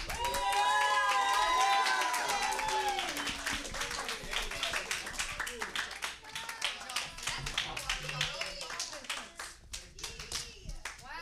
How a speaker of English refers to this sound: And now, let's give a big round of applause